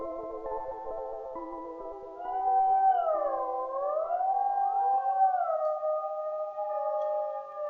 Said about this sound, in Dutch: Het drong al gauw op mij door dat het alleen maar een wolf kon zijn die reageerde op mijn huil. Zo'n roedel die reageert op je wolvenhuil, dat komt wel binnen.